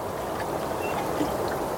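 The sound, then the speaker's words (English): Steady rushing and trickling of water on the River Liffey, where rowing was recorded, continuous with faint gurgles but no distinct rhythm of oar strokes; no one speaks. “The resultant artwork was 13 hours, you know, of a cycle of names being read, but also sounds of rowing from the Liffey, even microorganisms, life from the bottom of the river.”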